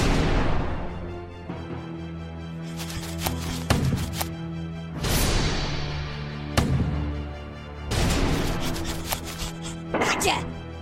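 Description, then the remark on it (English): Several loud cannon blasts boom out at irregular intervals while a rock is stuffed into the cannon barrel between firings. Each burst trails off in a rumbling decay over a steady low hum. “He had to stuff it in there in between firings.”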